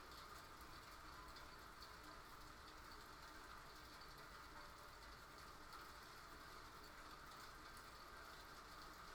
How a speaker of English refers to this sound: We interrupt our regularly scheduled programming for some nice rain sounds.